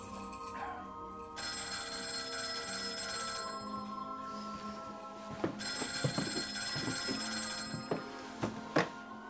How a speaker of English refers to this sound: It was about 9:30 when the phone rang.